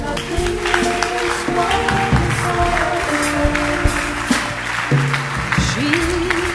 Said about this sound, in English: Clap your hands.